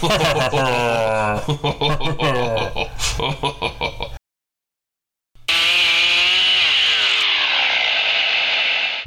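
Chainsaws start up and rev loudly, their engines whining and sputtering. After a brief silence, another sustained, high-pitched burst winds slowly downward.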